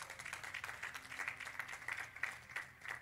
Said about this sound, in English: Clap for Jesus.